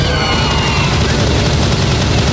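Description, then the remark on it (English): A Tommy gun fires in a loud, sustained burst, rapid shots blurring into a continuous rattling roar with a heavy low-end thump throughout. “A Tommy gun!”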